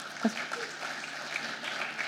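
A round of applause from a group: dense, steady clapping that keeps an even, fairly soft level for about two seconds, with a brief vocal sound near the start.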